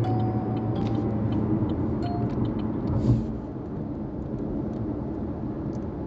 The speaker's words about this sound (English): Sorry about that, y'all. Y'all know I'm in my car. I'm driving.